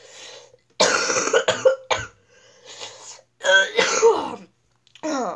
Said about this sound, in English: Yeah, I'm coughing a lot today.